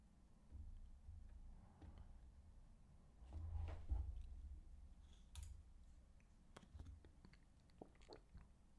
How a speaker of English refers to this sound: What a big swig of water.